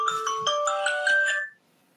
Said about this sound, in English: Excuse me. The alarm going off.